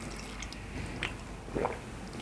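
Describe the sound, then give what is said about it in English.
Someone drinks water, with a couple of soft wet gulps and small liquid squishes over a low background hum, no talking. “I just need some water.”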